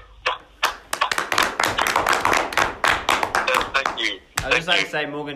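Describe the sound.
A small group claps in a quick, uneven burst of sharp hand claps for about four seconds, then the applause stops abruptly and a person starts talking.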